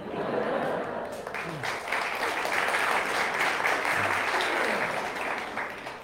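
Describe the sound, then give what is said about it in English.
An audience of boomers, born 1946 to 1964, claps steadily for about six seconds, a dense, fairly loud wash of many hands with no clear rhythm, and a few faint voices murmur underneath. “Yeah, only so little clap, money.”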